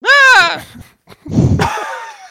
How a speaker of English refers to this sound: Did you just scream at your own dick?